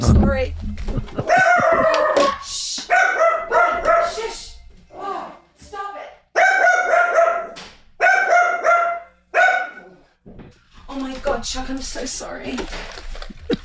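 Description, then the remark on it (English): A dog barks loudly at a delivery person, in repeated bursts of sharp, high-pitched barks separated by short pauses, carrying on for over ten seconds. “the dog appearance. literally wanted to kill the delivery guy.”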